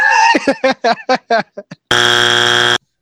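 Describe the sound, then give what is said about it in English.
A pre-recorded game show buzz-in buzzer, triggered by hitting a laptop: a quick run of bright, chirpy electronic blips leads into a loud, harsh, steady buzz that holds for almost a second before cutting off abruptly. “If you want to buzz in, you just hit your laptop really hard.”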